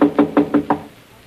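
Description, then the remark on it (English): Five quick, evenly spaced knocks on the closed wooden door of Uncle Jim's office, fairly loud, with hollow resonant thuds and no voices. “His door's closed. We better knock.”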